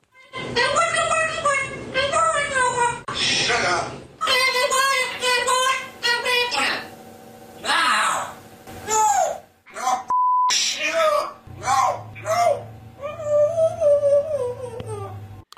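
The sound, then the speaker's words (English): A pet parrot named Bud mimics a male and a female voice, switching between lower male-like and higher female-like vocal tones in garbled, speech-like phrases, with a brief electronic beep and short pauses between bursts. “Sounds of the parrot Bud.”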